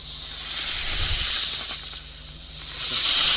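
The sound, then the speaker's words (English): A snake hisses in one long, steady breathy rush, loud, swelling slightly and then rising again toward the end, with no voices. “It's a snake that's hissing.”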